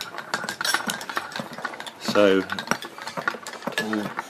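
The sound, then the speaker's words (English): Rapid, irregular clinks and clatter of utensils against glasses and dishes, bright and continuous, with a couple of brief spoken words breaking in partway through. “And now for those 30 seconds of clinking sounds.”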